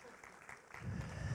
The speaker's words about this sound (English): Golf clap.